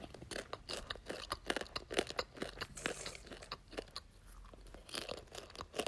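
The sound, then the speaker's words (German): Loud crunching of popcorn being chewed with the mouth closed, a rapid, irregular series of crisp, wet bites and smacks continuing steadily without any talking. “Ja, dann die Leute, bei denen gesagt wird, sie sollen aufhören zu schmatzen, aber dann mit dem Mund zu noch schmatzen. Popcorn.”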